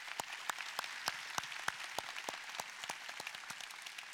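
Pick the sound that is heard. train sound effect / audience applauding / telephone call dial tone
audience applauding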